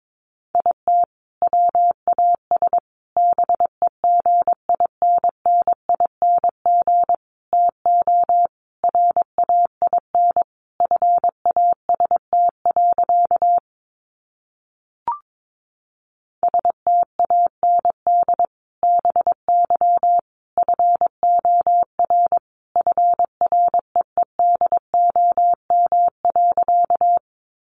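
A steady mid-pitched tone keys on and off in quick dots and dashes, sending Morse code sentences made from the top 800 words at 22 words per minute, with one brief pause partway through and no voices.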